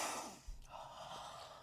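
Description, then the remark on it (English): A person imitates sniffing a pillow with a few quick, breathy inhalations through the nose, fairly quiet, with no talking. “I'm like sniffing this pillow.”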